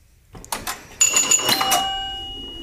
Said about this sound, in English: Pinball. Pinball machine. You are correct, sir.